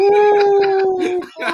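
Dogs howl in one long, steady, drawn-out tone that barely wavers, loud, with short choppy bursts of other sound breaking in around it.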